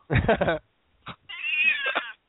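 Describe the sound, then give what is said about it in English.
A cat yowls in loud, drawn-out cries: a harsh opening wail, a brief squawk after a pause, then a long wavering howl. “Jeez, You've got to be doing something bad to that cat to make it sound like that.”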